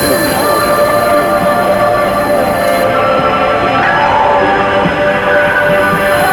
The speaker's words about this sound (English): Now again, here's our bell.